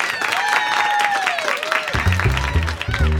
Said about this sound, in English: It's stand-up week, so put your hands together for today's comedian, Aminah Imani.